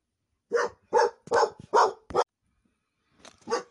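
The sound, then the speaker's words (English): A dog barks five times in a quick, rhythmic burst, then pauses briefly before letting out a couple of softer, shorter barks. No one speaks. “Sorry about that. My wish my dog would get COVID.”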